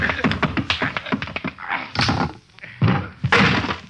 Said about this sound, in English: It's too bad, Feeney. I didn't want to knock you out.